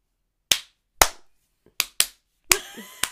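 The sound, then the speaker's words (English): Six sharp hand claps in an uneven, stumbling rhythm, loud and alone, with two landing close together and the others spaced slowly apart, clearly out of any steady beat. “The slow clap. The slow out-of-time clap.”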